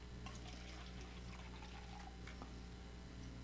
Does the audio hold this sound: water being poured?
yes